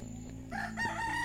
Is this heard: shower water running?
no